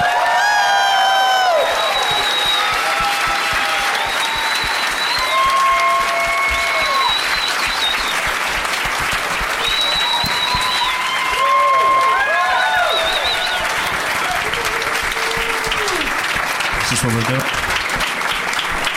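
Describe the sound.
Steady audience applause with loud cheering and whoops on top, welcoming two players out for a game, high shouted voices rising and falling throughout about nineteen seconds of continuous, dense clapping.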